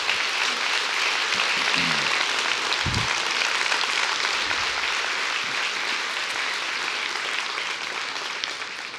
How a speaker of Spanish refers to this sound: ¿Por qué no le da un aplauso a nuestro Dios?